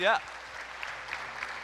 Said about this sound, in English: you can clap again for that, I guess.